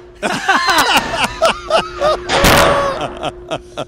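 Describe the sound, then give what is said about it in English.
A door slams hard with a single loud, crashing bang that rings out briefly, surrounded by animated, overlapping voices before and after. “That is such a violent door slam there at the end.”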